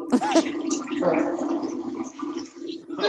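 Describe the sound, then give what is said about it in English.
A toilet flushes, a steady rushing and gurgling of water lasting the whole few seconds, with brief voices overlapping near the start. “Somebody just flushed.”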